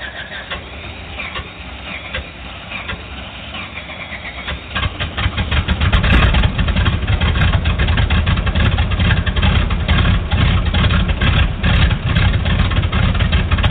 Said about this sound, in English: REPA 22, you're clear to start engines.